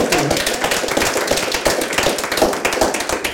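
A small group applauds, a brisk, steady patter of overlapping claps at even loudness for a few seconds, with no talking over it.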